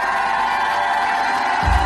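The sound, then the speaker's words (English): A large audience shouts and cheers together in a dense, sustained roar of voices, with higher whoops riding on top and a surge of low rumble near the end, at a Christian Harfouche Ministries service. “If that is you, shout like you never shouted in your life.”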